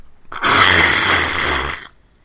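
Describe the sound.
A single loud, sustained raspberry-like sputter lasting about a second and a half, made by a voice imitating a fart during a group round of best fart noises, with a buzzy, rough texture and an abrupt start and stop.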